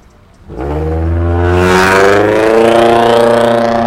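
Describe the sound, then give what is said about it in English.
A loud, souped-up Nissan car with a modified muffler roars as it drives by, revving and rising in pitch with a deep, throaty exhaust rumble that holds steady for several seconds, no voices present. “It's just a loud car. Little souped-up Nissan.”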